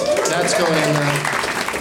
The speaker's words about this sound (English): Nice golf clap.